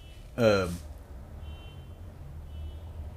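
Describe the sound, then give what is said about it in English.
A single short, loud car horn honk from somebody honking outside, with a bright, buzzy tone, cuts in early, then fades into a low steady rumble with faint traffic-like noise. “Oh, that's no, a that's horn. Somebody's actually honking.”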